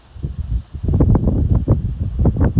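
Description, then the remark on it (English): Wind blowing through trees, a steady rushing roar with low gusty rumble and rustling leaves, swelling in waves over a couple of seconds with no voices. “Just get to hear the sound of the trees and the wind blowing and the geese squawking.”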